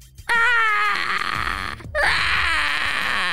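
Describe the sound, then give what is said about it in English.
A bird call rings out in two loud, shrill cries, the first sliding slowly downward in pitch, then a brief break before a second, harsher wail that holds steady. “Wait, that actually did sound like a bird.”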